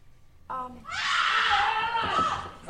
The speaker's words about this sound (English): Sorry, I should set this up. This is a scream comes from the bathroom. And because the Hulk is in there.